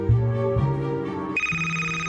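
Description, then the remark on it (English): A phone ringtone plays on its own as the bully calls Cool Cat, a short electronic melody of sustained tones that steps between pitches, jumping noticeably higher near the end. “The bully is calling Cool Cat.”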